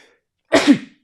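A single sharp sneeze bursts out, a quick breathy explosion lasting under half a second, surrounded by silence.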